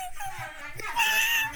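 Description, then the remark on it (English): A dog whimpers during sexual activity between two dogs, a short series of high, thin whines that swell into one longer, strained cry before fading, over faint background rumble. “There's some bestiality going on. Yeah. Here, it's not bestiality. It's dog on dog.”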